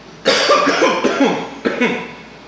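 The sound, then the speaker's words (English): Harsh, raspy coughing after inhaling smoke from rosin: a long hacking fit of several coughs, a short pause, then another loud burst of coughs. “So for me, that causes me to cough for like half an hour.”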